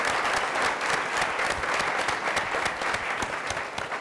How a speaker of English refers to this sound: Well, will you join me in applauding each and every one? Also, one more round of applause for the whole panel, plus our moderator. She did a great job.